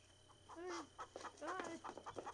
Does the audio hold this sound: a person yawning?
no